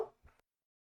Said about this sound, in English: It's like, normally I'm happy to let her bark, but then I remembered that this is supposed to go on the podcast episodes, and I don't think people want to listen to a giant dog bark.